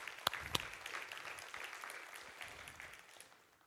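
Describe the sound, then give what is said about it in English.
An audience claps steadily in a dense, continuous wash of applause, with a couple of sharp, louder claps standing out near the start before the clapping gradually tapers. “And I think we should give ourselves a round of applause that we are a church that is emotionally supportive of one another.”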